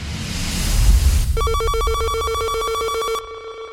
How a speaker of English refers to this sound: Okay, maybe you can play us some of your private revs. My favourite engine noises. Oh, that is Le Sound's Space Motors.